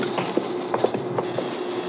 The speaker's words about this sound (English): I'll ring the buzzer. Just push on the door.